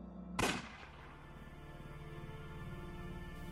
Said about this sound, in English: What? Was that a gunshot?